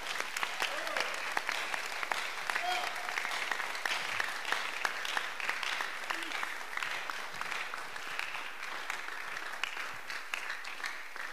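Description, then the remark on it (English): An audience applauds for Jesus steadily for about eleven seconds, a dense, even roar of many hands clapping at a constant level, with faint voices calling out briefly within it. “Clap for Jesus.”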